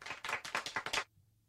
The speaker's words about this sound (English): Stop, fuck off. Stop fucking clapping. He's trying to talk. Stop.